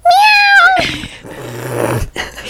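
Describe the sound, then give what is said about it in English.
A female cat lets out one loud, drawn-out meow, followed by a rougher, grumbling noise that continues for a couple of seconds. “Wow, is she really saying that? Callie, she has so much to say.”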